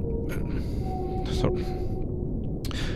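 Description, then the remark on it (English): Beluga whales whistle in thin, steady tones and chirp over a dense underwater rumble, with bursts of sharp clicks sweeping through several times. No talking. “Their complex communication repertoire of whistles, clicks, and chirps has prompted the nickname Canaries of the Sea.”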